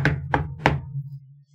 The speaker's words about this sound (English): Should we knock? I knock on the door.